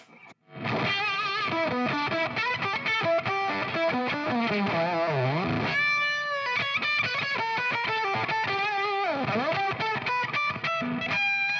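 Electric guitar played through a thick octave fuzz with a Universe Vibe effect placed in front of it, loud and upfront, with sustained buzzy notes, wavering vibrato and sliding bends across about ten seconds of continuous playing, no voices.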